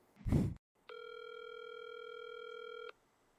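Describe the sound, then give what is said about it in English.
A brief muffled thump, then a steady electronic telephone tone as a call is placed, holding for about two seconds and stopping abruptly. No one speaks. “Let's get him on the phone right now. All right, let's call him.”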